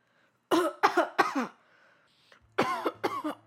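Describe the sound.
A person fakes a series of harsh, raspy, sickly coughs: three close together, a brief pause, then two more. Each cough is loud, with a rough, phlegmy edge.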